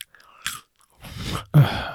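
Crunchy chewing of Garfield Lasagna Flavor Blasted Goldfish fish-shaped crackers, several crisp bites and crackles in quick succession, the loudest crunch near the end, with no talking over it.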